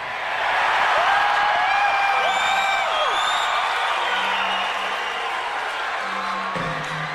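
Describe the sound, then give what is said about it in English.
A large crowd at a concert roars loudly and steadily right after a speaker asks whether we choose fear, with piercing whistles and whoops rising above the sustained wash of cheering throughout. “Listening to this now, I am struck, you could say I'm disturbed, even by that crowd roar after Do We Choose Fear?”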